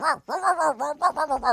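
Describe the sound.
A 21-year-old Texas woman's voice imitates a dog for a video on her OnlyFans page, giving a whiny whimper followed by a quick run of four or five short, high yelping barks, fairly loud with no other sounds.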